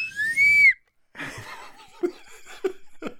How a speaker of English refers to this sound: Dude, the slide whistle's actually pretty funny, dude. It makes a great boner sound effect.